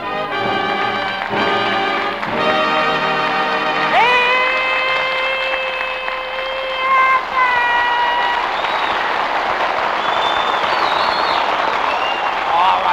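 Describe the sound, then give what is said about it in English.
The studio audience of the Abbott and Costello Show in Hollywood bursts into loud, sustained cheering and yelling as Bud Abbott and Lou Costello are introduced, with clapping mixed in and several high, drawn-out whoops rising above the roar before it swells into a broad wash of applause. “Cut out that yelling.”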